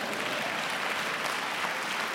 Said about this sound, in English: I think all of you here should clap more than everybody, because you should clap more than... Yeah, maybe you should stand like that, all of you, and just thank the Lord.